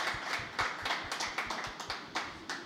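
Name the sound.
audience round of applause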